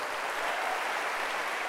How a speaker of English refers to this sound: Another hand clap for Jesus.